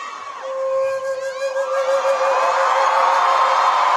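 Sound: crowd cheering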